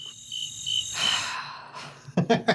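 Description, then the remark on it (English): A steady chorus of crickets, edited in after a joke, chirps in high, shimmering trills for a couple of seconds, ending with a short burst of breathy noise. “Edit in some cricket noise.”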